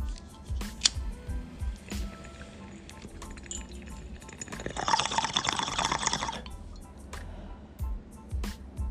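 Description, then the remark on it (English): Water bubbling through a bong as someone draws a hit, a loud gurgling burst of about a second and a half, framed by quieter drips, clicks and faint breathing. “So I'm about to take this hit.”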